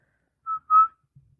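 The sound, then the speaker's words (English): Two short whistled toots close together, the second slightly longer and louder, a person imitating the toot-toot of Popeye the Sailor Man's pipe, followed by a faint low rustle. “He his pipe makes a little whistle sound.”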